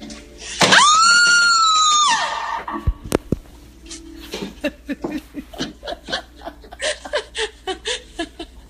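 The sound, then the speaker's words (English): A loud, high sustained scream rings out from a woman, followed by a few sharp bangs as she beats on a door with people on the other side, then bursts of rhythmic laughter, in a haunted-house hallway in Georgia. “She just beat on the door that these people are on the other side of and started screaming.”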